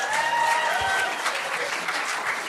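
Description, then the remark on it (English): A Sydney audience at a live show applauds steadily, a dense, even wash of many hands clapping at once, with a few brief whoops or cheers riding on top near the start; the applause is from those who have never seen a Green Guide in real life. “A round of applause if you have never actually seen a Green Guide in real life.”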